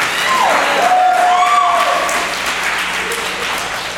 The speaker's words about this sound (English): Y'all can clap, goddamn.